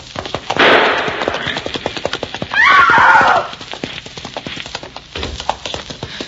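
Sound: galloping horse hooves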